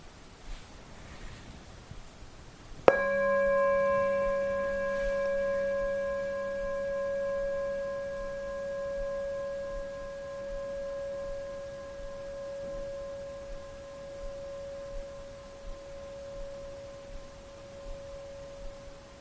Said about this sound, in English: And in the second experience of bell, using the body, see if you can notice the inception of the rising of the bell, the length of the experience, and as it completely passes away.